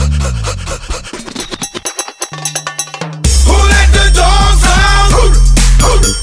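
A dog pants in quick, rhythmic breaths for about three seconds before loud, bass-heavy music abruptly takes over.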